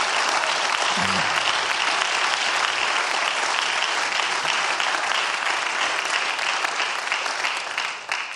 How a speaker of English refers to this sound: They did an incredible job. It was awesome to have them with us. And so if we give them a round of applause as well.